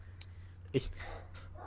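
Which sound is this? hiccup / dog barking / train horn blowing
dog barking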